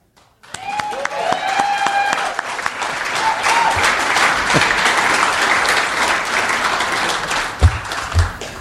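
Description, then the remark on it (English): A crowd bursts into loud, sustained applause, a dense wash of clapping with some whoops and cheers on top, holding steady for several seconds, as T.J. Miller is called to the stand and comes on stage as a witness at a trial. “Never been to a trial where they applaud when the witness comes on stage.”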